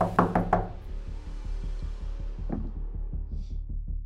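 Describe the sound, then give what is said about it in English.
Several heavy, rapid pounding knocks on the door of a neighbor's house in the rain, loud, followed by a steady run of duller, rhythmic thuds over a low droning hum. No voices. “Shit, well, I'm going to run to the neighbor's house then, beat on the door.”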